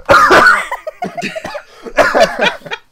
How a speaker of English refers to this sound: I feel the cough coming.